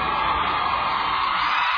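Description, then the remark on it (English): A large outdoor crowd at The Today Show cheers and screams in a steady, dense roar, high-pitched whoops and shouts blending into one loud, continuous wash of excited noise. “Oh, God, that outdoor crowd.”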